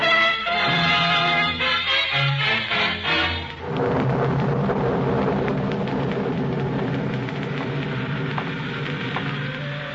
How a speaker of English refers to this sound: The rain was nasty and cold.